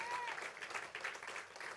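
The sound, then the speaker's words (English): A church audience gives God a round of applause, a dense wash of many hands clapping at once that holds for the whole moment, with a brief high tone near the start. “Come on, if you're going to give God a round of applause, do it with all your heart.”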